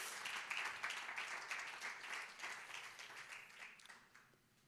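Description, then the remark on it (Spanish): A church audience applauds steadily for several seconds, a dense wash of many hands clapping at once that stays fairly even before tapering off at the end. “Denle un fuerte aplauso a Dios por eso.”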